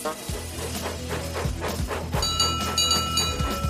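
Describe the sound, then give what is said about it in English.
The steam engine Duck, coupled to the coach Hannah, puffs slowly out of the siding in a steady chugging rhythm, the soft bursts repeating about twice a second, with a bright tonal layer joining partway through. “And they puffed slowly out of the siding.”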